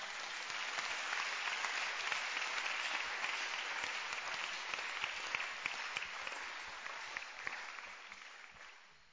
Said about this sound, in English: Hallelujah. Give the Lord a wonderful clap offering.